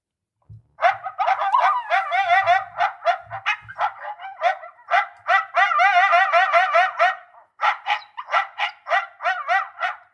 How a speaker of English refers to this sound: So anyway, I'll start with something like this. You could also start with this. So this would be yipping coyotes.